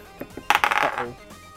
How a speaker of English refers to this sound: And I'm just gonna roll a dice quickly for no big reason.